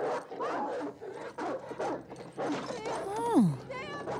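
A dog in a film gives a string of short barks and yips, then a drawn-out whimper that slides downward in pitch, followed by a few softer whining cries.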